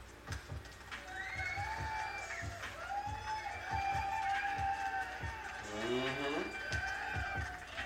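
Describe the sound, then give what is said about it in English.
A lively crowd cheers and whoops steadily, with high whistles and shouted voices rising over scattered sharp claps, a dense, loud wall of celebration that never lets up. “Clap! I say clap!”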